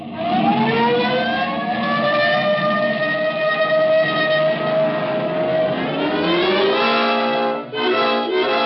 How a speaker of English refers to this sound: This time you can use the siren.